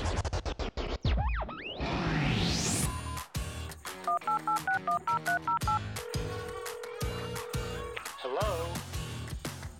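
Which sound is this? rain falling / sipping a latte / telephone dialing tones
telephone dialing tones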